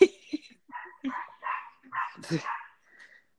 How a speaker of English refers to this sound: Sorry, I got a new puppy.